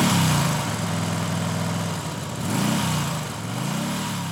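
A small scooter engine hums steadily, its pitch rising and falling in a few gentle revs over a continuous drone, as the scooter is ridden down the mud roads of a village filled with chili farms, with no voices.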